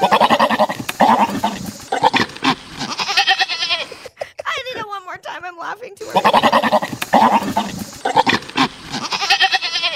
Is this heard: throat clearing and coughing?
no